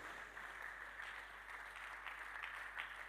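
A crowd claps steadily for about three seconds, a soft, continuous patter of many hands with no voices over it, staying fairly even in loudness throughout.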